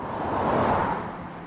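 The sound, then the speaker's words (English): A steady roar of motorway traffic, swelling as a vehicle rushes past and then easing slightly, with no voices present. “You manage to flag someone down on the side of the motorway.”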